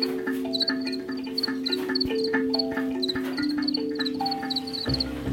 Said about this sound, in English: Everyone has some sort of positive association with the sound of cricket singing.